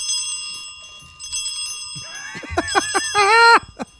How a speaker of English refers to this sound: Watch out for the bells. Be careful when you ring those.